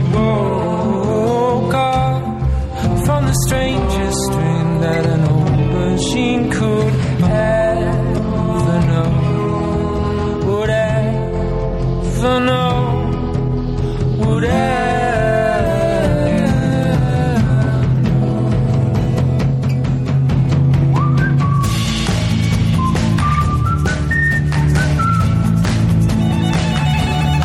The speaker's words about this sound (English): When the kids go to the orchestra, listen to how the whistles, they kind of have like this aerial dogfight with like a violin and a oboe or something. And it's very exciting.